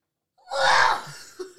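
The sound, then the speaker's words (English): A single loud, breathy sneeze bursts out, a sharp explosive blast of air that trails off quickly, followed by a couple of brief vocal sounds. “You got to fix your sneeze.”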